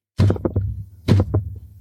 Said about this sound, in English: Big metallic thuds on the staircase. Guys, gals, and non-binary pals, I present to you the patented Albert Penis horse-proof armor. And I'm going to come down the stairs in my little Artificer's Iron Man outfit.